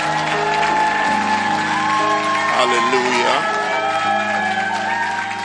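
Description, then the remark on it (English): A church audience claps and cheers loudly and steadily after a prayer as people take their seats, with shouts and whoops rising over the applause and a voice calling out over the crowd noise. “Put your hands together as you take your seats. Your hand clap was very short.”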